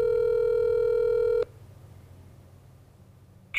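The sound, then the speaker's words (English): A loud, steady telephone tone holds for about a second and a half, cuts off into near silence, then a brief higher beep sounds right at the end, as a call reaches an automated voicemail line. “If you don't have a touch-tone phone, please stay on the line to leave a voice message.”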